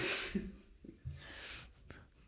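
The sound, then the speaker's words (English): A long, drawn-out yawn: a breathy intake of air, a low voiced groan in the middle, then a hissing exhale trailing off, with no talking. “We'll cut out the huge fucking yawn.”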